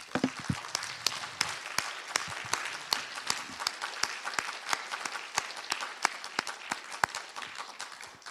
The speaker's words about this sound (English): I just wanted to take a moment to give them a round of applause so that they can hear it through this microphone and know that there are people who care about them who are here.